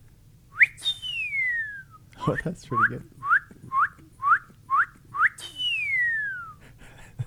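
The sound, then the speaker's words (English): A person whistles a cardinal's call, known as the 'what cheer': a long descending slurred note, then a quick series of seven short rising chirps, and the long slur again. A voice briefly speaks partway through. “No, the only one I can do is a cardinal.”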